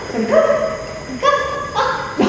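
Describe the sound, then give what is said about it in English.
A dog gives a quick run of high, yelping barks, about four bursts in a row, fairly loud with a slightly whiny, tonal edge, at a casting call in Coquitlam where dogs auditioned for the role of Sandy in Annie the Musical. “They're very talented pooches showing off their skills.”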